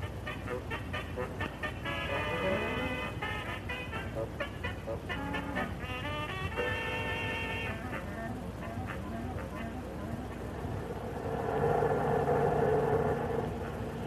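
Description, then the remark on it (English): A bus engine rumbles steadily and low throughout a bus ride of more than an hour. Brief higher tonal sounds rise over the drone now and then, and the rumble swells near the end. “We've been on this bus more than an hour.”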